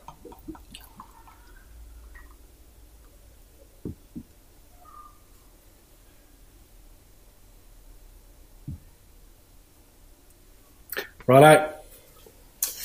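Löwenbräu beer pours into a glass in a short, loud gurgling rush near the end, preceded by a long stretch of near-quiet with a few soft drips and clicks.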